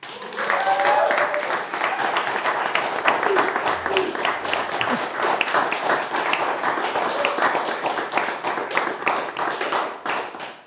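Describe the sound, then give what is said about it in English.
Sustained applause from an audience after a poem is performed, dense overlapping hand claps going steadily for about ten seconds at an even, fairly loud level, with a few faint voices mixed in. “Them claps went on for a long time.”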